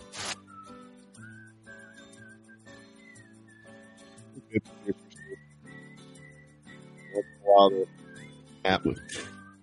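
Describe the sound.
A person whistles a steady, wavering closing tune at moderate volume, with low sustained tones underneath and a few sharp bursts and rustles toward the end.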